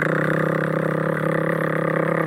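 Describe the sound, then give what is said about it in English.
A voice imitates a rotary tattoo machine with a low, steady, droning buzz that holds an even pitch and loudness for a couple of seconds, with no talking over it. “So it's like a way lower, quieter buzz. So just do the impression.”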